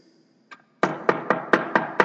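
A faint tap, then six firm, evenly spaced, loud knocks on a wooden door in a steady rhythm, with no voices.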